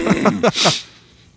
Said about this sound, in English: Clear my throat.